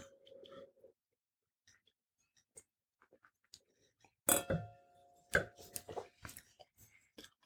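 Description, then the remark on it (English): Wine glasses clink together once in a toast at a wine tasting, leaving a bright ringing tone that lingers briefly. A few softer knocks and handling noises follow, with no one speaking. “So before we do that, we'll just cheers. Cheers. Oh, that was a really nice sound.”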